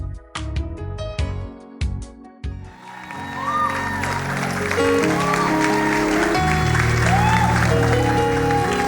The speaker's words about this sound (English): Please, if you're clapping, do it for Jesus and do it very well.